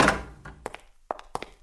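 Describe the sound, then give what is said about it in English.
A door leading into the back part of a floor, to the private office of Chief Chemist A.G. Gerber, being opened: a soft initial thud, then a few sharp wooden clicks and knocks of the latch and handle, spaced irregularly, moderately quiet, with no voices. “There's a door leading into the back part of this floor.”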